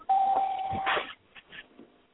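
A single steady electronic beep from a phone as a call comes in from area code 585, holding for about a second, then cut off by a brief burst of clattery noise and a few faint, scattered sounds.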